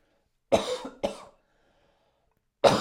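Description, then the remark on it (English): Two coughs in quick succession, then a pause before a third cough starts near the end. The coughs are fairly loud, with no talking. “Oh, a little bit of a cough there.”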